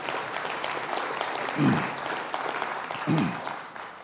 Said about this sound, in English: You can clap about that. That's good stuff.